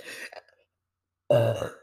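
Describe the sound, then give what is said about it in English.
A loud burp into the mic on camera erupts after a brief breathy sound and a pause of silence, low and throaty with a rough, resonant rumble lasting about half a second. “If any of you guys watch Where My Mom's At with Christina P, just know that she is my inspiration for burping on camera, because she'll tell you to burp into the mic.”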